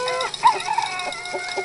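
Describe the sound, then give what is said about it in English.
Chickens cluck in short, quick bursts while a rooster's drawn-out crow rings through underneath, a busy barnyard chorus with no voices, lasting under two seconds. “It's chickens in the news. And now, the Flopcast presents... Chickens in the news.”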